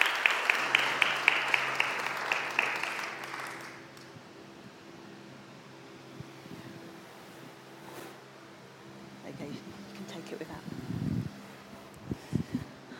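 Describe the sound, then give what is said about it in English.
A short burst of applause from a small group welcoming two guests at a morning gathering, brisk, fading out after about four seconds into a quiet room hum with a few faint knocks and rustles. “Would like to give them a round of applause.”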